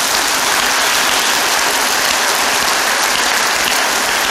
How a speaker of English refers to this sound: We should probably clap, yeah.